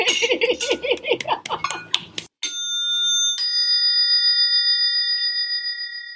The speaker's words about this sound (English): I believe the perfect way to end this is to all shout goodbye and clink a glass. Bye!